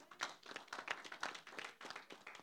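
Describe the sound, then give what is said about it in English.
A group claps for the Lord Jesus together in a steady, fairly quick rhythm, the overlapping hand claps blending into a brisk, lively patter with no voices heard over it. “Clap for the Lord Jesus.”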